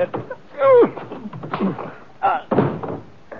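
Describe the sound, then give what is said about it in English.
A scuffle with a few heavy thumps, a punch landing on a man's jaw and his body hitting the ground as he is knocked down, mixed with grunts and voices talking. “You knocked him off. So I did. He must have a very weak jaw.”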